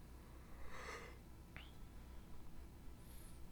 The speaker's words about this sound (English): You're fucking yawning, dog. Sorry.